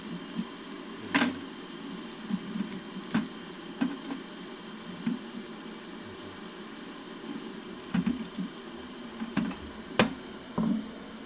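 An electric kettle coming to the boil in the morning: a steady, surprisingly loud rushing roar with irregular pops and crackles of bubbling scattered throughout, and no voices.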